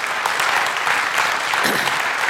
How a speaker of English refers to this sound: So the Bath campus grew by 11% last year, okay, 11%. Now, you can clap for it,